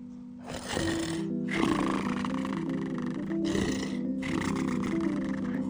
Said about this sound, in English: They could hear a deep rumbling from further back in the cave.